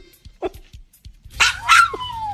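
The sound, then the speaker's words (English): A dog called Big Dog lets out two loud barks in quick succession, the second trailing into a drawn-out, falling whine, after a few faint soft sounds at the start. “Want Big Dog to say he loves you?”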